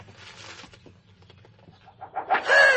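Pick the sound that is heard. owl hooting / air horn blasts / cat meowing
owl hooting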